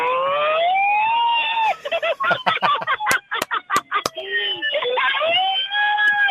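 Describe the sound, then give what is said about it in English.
A loud, buzzy siren from a stolen megaphone, used as a sound effect as a quiz contestant goes top of the leaderboard, wails up and down, breaks into a rapid stuttering yelp punctuated by sharp clicks, then returns to its rising and falling wail. “Do you know, providing my own sound effects because we stole a megaphone from...”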